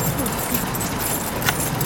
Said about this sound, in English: Whoa! Where are my keys? Keys, keys, keys, and keys.